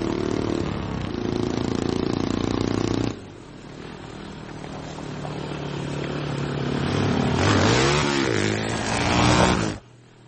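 A motorcycle engine rumbles loudly and steadily as a man rides off on it, then drops in level and builds again into a rising rev near the end before cutting off abruptly. No one speaks.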